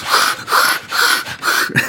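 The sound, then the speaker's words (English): A voice imitates someone sanding down a wooden staircase with four steady, rhythmic breathy rasps, each a harsh back-and-forth scrape of about the same length and loudness, with short gaps between strokes. “It was a girl that was sanding down her staircase while she was doing a podcast.”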